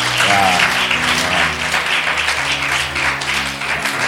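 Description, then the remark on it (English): An audience applauds an event's organizing team steadily, a dense wash of many hands clapping at a fairly loud, even level for several seconds, with a faint low hum beneath. “So we need to, I think we should applaud them again. We should applaud them again.”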